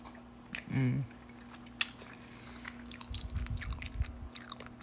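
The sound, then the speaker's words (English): Chewing of oatmeal with sunflower butter at 8 a.m., with wet, sticky mouth clicks and smacks in an uneven rhythm, plus a brief low hum from the eater early on. “You hear some more chewing?”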